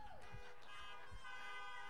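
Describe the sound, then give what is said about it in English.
Several car horns honk together in a sustained, overlapping blare, loud, with a few low thumps underneath and no clear break for the full two seconds, as people in cars at a church gathering honk in answer to a preacher's call to honk if they love Jesus. “Honk if you love Jesus.”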